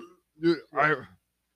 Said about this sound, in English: Dude, I feel like I got infinite amounts of burps, though. I don't usually find burping jokes funny, but I can't stop burping. It's just constant.